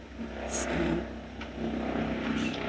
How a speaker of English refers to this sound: So helicopter overhead.